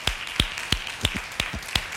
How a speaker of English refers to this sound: Jesus is perfect in every way, and that's why every chance I get, I clap my hands.